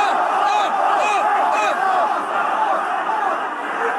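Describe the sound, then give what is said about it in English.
A large stadium crowd at a Bradford football tie bays and roars continuously for number 29, McMahon, to be sent off after he pushed Taylor in the face, a dense wall of voices with rising shouts and jeers swelling throughout, loud and unbroken for the whole stretch. “Crowd baying for the man to be sent off.”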